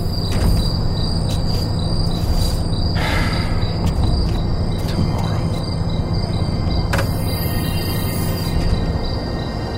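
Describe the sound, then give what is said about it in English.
Artificial chirping plays over speakers, a steady high-pitched trill running through the whole stretch, joined by brief bursts of hiss and a constant low hum underneath. “I hate the fake chirping they play. As if the birds were real.”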